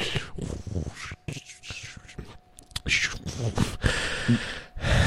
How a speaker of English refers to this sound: I don't know why I'm out of breath.